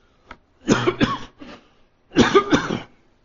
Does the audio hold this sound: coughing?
yes